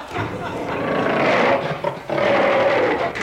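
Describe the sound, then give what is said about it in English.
A lion roars loudly in a lion's den, a long rumbling roar that breaks off briefly and then surges again into a second sustained roar. “Lion's den.”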